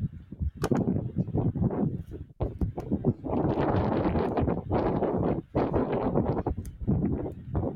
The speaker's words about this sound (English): I know it's probably windy right now. I can feel it. It is, yeah. I feel it's windy.